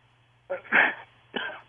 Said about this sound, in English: It sounded like that one hurt. That was you okay? He said that was two sneezes now.